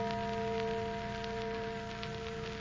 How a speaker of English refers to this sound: Church bell. Oh, but there aren't any churches around here. Oh, sure there is. That little old church down at the other end of the valley.